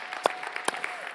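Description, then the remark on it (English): Audience applause: a dense, steady patter of many hands clapping, with a few sharper, louder claps popping out over the brief wash of sound. “So yes, we can applaud that for sure.”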